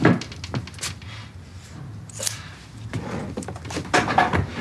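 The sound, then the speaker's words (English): A door opens and shuts with a series of wooden clunks and knocks, scattered across a few seconds over a quiet room hum, with no voices. “you're supposed to knock. I'm serious this time.”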